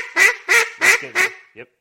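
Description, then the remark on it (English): A duck game call blown in a quick series of four loud, raspy quacks, followed by a short softer fifth note trailing off. No talking over it. “And that starts to make it sound more like a duck.”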